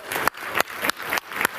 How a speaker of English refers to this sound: Can we give the Lord a clap of praise?